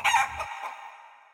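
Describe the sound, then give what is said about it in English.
A single short crow from a hen called Hattie rings out clearly, bright and strained at first, then tapering off into a fading tail. No voices accompany it. “while all around the house, from pantry to parlour, his cheery wife, five children, and his hen called Hattie whirled and whooshed and wheeked.”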